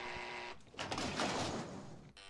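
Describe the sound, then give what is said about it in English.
A harsh electric apartment door-entry buzzer sounds in one sustained blast of about a second and a half, loud, with a low hum before and after. “I buzzed it. Open the door when I buzz it.”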